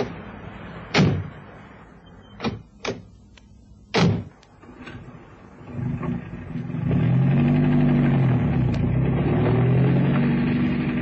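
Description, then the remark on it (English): Several sharp car door slams ring out, then a car engine turns over and settles into a steady, low droning hum that carries through to the end, with no talking. The car is setting off on a road that is one sheet of ice, in bitter cold. “Careful driving, Cannon. The road's one sheet of ice.”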